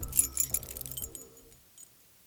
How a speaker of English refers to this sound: He refused to stop there and was thankful he didn't lose his keys in the forest as he desperately tried to unlock his door.